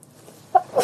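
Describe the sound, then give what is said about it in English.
A single sneeze: a brief voiced catch of breath, then a sharp, hissy burst of air right at the end, with no talking around it. “Bless you.”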